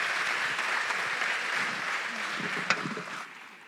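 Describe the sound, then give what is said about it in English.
An audience applauds people who shared their stories, with steady, dense clapping that holds for several seconds, one sharper clap standing out near the end before the sound begins to thin and fade. “Would you give my friends here a round of applause?”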